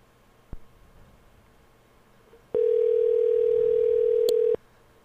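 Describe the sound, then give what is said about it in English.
A single loud, steady ringing tone of an outgoing phone call lasts about two seconds and then cuts off, after a faint click and quiet background hiss. No one speaks. “let's go make a call here real quick. See if he answers.”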